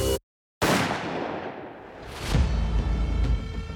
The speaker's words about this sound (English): The next thing she heard was a gunshot piercing the quiet afternoon. At first, Nancy thought she'd imagined the sound, but then a second shot rang out.